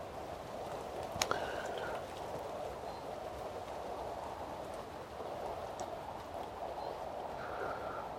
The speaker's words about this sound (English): I am enjoying the rain, as I said, as I started recording this. I've been out in it quite a lot.